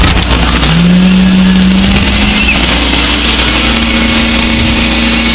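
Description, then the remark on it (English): A truck's engine roars and revs loudly as it comes in fast, the pitch rising and holding steady over a constant, dense rumble of traffic-like noise. “Coming in, nice speed. They bring that in fast.”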